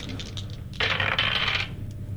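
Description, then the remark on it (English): Dice rolled for a perception check clatter across a hard tabletop in one short rattling burst, under a second long, with no one speaking. “All right, and with that, the perception check is, when my dice want to actually roll for me.”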